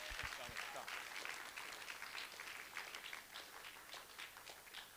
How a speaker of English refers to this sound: And why don't you all give him a massive cheer as he comes to share.